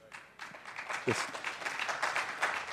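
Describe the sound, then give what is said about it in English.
An audience at a Parkway Community morning gathering claps together, a steady patter of many hands at moderate volume lasting a few seconds, with faint voices mixed in. “That's kind of cool. I actually don't get a clap every once in a while in a Parkway Community morning.”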